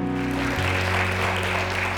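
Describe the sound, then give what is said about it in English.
An audience at Hyde Park Baptist Church in Lumberton, North Carolina, applauds the Lord for the talents of those who performed, clapping steadily for the full two seconds in a dense, even wash, with low sustained tones humming underneath. “It's all good, because I know ultimately you're applauding the Lord for the talents that that they've got and that they use, and we're very appreciative of.”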